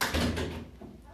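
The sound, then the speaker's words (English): A single abrupt sneeze bursts out into the microphone, loud and breathy, then trails off quickly into quiet room tone. “Well, excuse me. Bless you. We'll have to edit that.”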